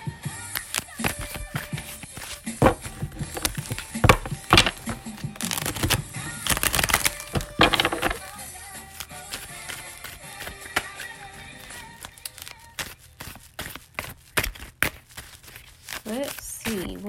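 A deck of tarot cards being shuffled for a tarot reading, with repeated papery riffles and soft taps coming in short bursts, louder in the middle and settling into lighter flicks toward the end.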